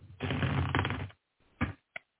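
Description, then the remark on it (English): A deck of cards is riffle-shuffled, a dense rapid fluttering for about a second, followed by a couple of short soft taps as the cards are squared up. “Okay, shuffling here.”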